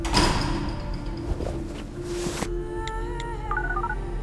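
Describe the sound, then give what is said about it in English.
A door slides open with a rushing mechanical whoosh and low rumble, ending in a solid thud, followed by a few faint electronic beeps. “Ivan, doors please.”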